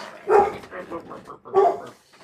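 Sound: dogs barking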